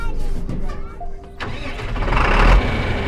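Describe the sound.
A tractor engine at P-Bar Farms cranks and catches about halfway through, then roars up into a loud, steady diesel rumble, with faint voices in the background, on a crisp fall afternoon before driving families to the pumpkin patch.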